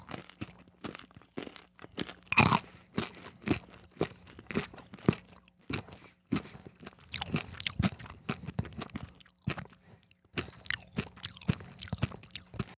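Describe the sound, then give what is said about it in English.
Crunching and chewing of Cadbury chocolate mini eggs, frozen in a freezer to make them extra crispy and chewed with the mouth a little open, with sharp brittle cracks and wet, rhythmic mouth sounds repeating steadily throughout, no talking. “chewing with my mouth open a little bit to hopefully get more of the sound into the microphone.”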